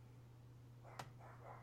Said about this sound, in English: Is this dog joking? Can you hear that?